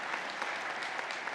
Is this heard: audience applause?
yes